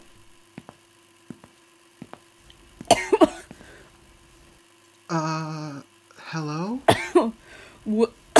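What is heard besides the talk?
coughing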